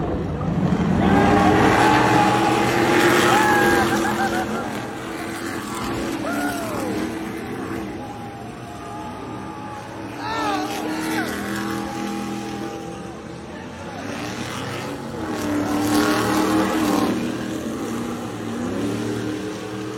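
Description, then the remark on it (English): Loud racing super trucks roar continuously, their pitch climbing and dropping in sweeping passes as they come off a straightaway into a sharp last turn on a track, with bursts of revving and a constant background rumble. “here's what Sam was talking about with the super trucks”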